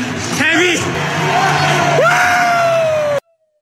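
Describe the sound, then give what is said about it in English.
A man screams and yells loudly in excitement at the end of a game his team has won, his voice rising into a long, sustained cry over background crowd noise, then cutting off abruptly. “So through that audio, he's at right at the end of the game, and that's when he just starts screaming and yelling.”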